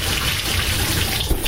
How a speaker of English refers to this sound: Were you done with the water? Yeah, you can turn the water off now.